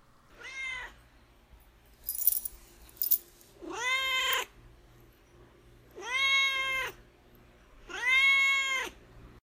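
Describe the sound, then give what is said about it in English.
A neutered male cat named Duarte meows four times, insistent, each call long and rising then falling, with a couple of brief clinking rattles between the first and second meows and no one speaking. “I mean, he's actually got a lot to say. He's been chatting throughout this whole episode, but...”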